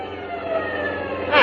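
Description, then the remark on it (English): A police siren wails steadily, its tone sliding up and down over the rumble of a moving vehicle, growing a little louder at the end, as police cars chase a car through downtown traffic. “How can I slow down with all those police cars on my tail?”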